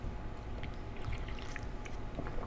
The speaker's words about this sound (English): Give me a second. Let me get some water. Let me get a sip of this coffee. Man, I've been on this thing all day.